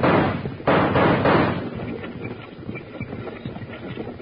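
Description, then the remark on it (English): Gunshots crack in a burst of crossfire on a road, a few loud sharp blasts up front, then a scatter of quicker, duller pops and thuds trailing off with no voices. “Take the other side of the road, and we'll give him some crossfire.”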